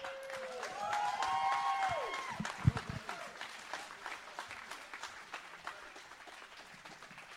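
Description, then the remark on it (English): An audience breaks into steady, sustained applause for the performers after a debate, staying loud throughout, with a few whoops and a bright tonal cheer riding over the clapping early on. “Guys, give them a round of applause for one a phenomenal last time.”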